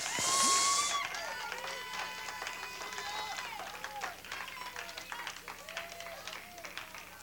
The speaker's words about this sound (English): Hallelujah. If you believe that, give the Lord another hand clap praise.